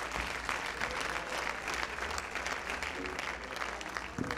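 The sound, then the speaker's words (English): An audience applauds steadily, clapping their hands unto the Lord to thank God, a dense wash of many hands clapping at once that holds at an even level from start to finish, with a faint murmur of voices underneath. “Why don't we clap our hands unto the Lord again and thank God for his presence.”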